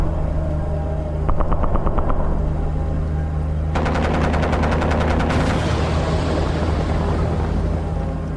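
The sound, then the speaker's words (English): Jet fighters fire rapid bursts of cannon fire at asteroids, a short volley and then a longer, louder one, over a constant heavy engine roar that fills the whole scene. “Jay and I watched the skies as jet fighters took down more asteroids.”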